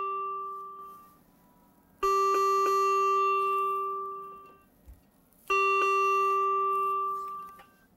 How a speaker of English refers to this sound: To do this, we must unplug the ventilator from the wall and assess that the ventilator alarms and tells us battery operation has taken over.